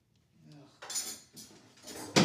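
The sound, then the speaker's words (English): Metal spoons clink and scrape in ice cream in a row of bright, ringing taps, a few short bursts of jangling followed by one sharper, louder clatter at the end, with faint voices murmuring underneath. “Grab 2 spoons.”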